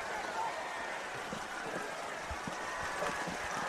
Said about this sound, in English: Yeah, the rain has picked up considerably now. Hopefully if it stays straight down, we'll be all right.